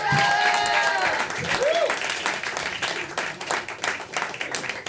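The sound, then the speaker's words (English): An audience bursts into steady, dense applause as a performer is introduced on stage, with a few cheers and whoops rising over the clapping early on before it settles into continuous hand claps. “One more round of applause for Jake Silverman.”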